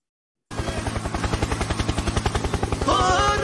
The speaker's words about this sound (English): That's correct. Let's play it again. Helicopter, helicopter.